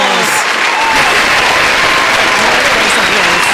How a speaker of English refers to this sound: Long applause.